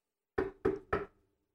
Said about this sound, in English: You are talking, you hear a rap at the door.